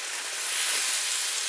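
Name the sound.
food sizzling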